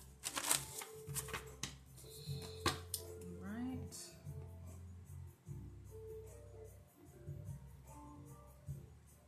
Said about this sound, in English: Let's jump right into the message and grab our jar cards, shuffle those up.